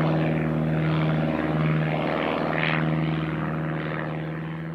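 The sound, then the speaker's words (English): Propeller airplanes drone steadily overhead, a loud, continuous engine hum with a throbbing pulse that swells slightly midway and then eases off, with no voices. “One day, when Gale was working in the fields, he heard a noise in the sky. He looked up and saw planes flying over his head.”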